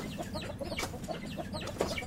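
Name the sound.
chickens clucking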